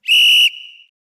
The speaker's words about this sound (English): Well, I suppose that can be the third quarter since we were running so heavy anyway. Why don't we hit the whistle one more, and we'll get to the fourth.